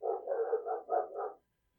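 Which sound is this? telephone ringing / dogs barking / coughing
dogs barking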